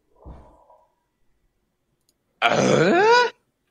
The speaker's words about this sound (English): If you can hear that in YouTube, let me know if you can hear it. Like, tell me I'm not going mad. That was another door banging, so I guess it's something going off in another room, like it's someone in the next room or whatever